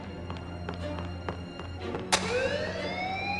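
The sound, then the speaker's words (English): A few scattered taps and knocks, then a sharp clunk as a school fire alarm is pulled and kicks in loudly, its wailing tone sweeping steadily upward over a low background hum. “I'll pull the fire alarm.”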